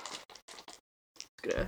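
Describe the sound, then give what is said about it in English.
Dice clatter onto a hard floor during a tabletop game roll, in a quick series of sharp, rattling bursts, pausing briefly before a final tumble, fairly loud, with a voice starting up at the very end. “Floor dice.”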